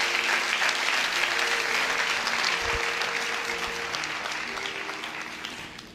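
Steady applause from an audience, a dense wash of many hands clapping at once that holds strong for several seconds before gradually thinning toward the end.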